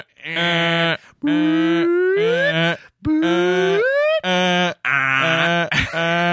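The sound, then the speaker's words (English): A voice imitates a car panic alarm in a run of loud, buzzy bursts. Steady honks alternate with rising whooping sirens for about six seconds, with no other talk over it. “Hit the panic alarm, bro.”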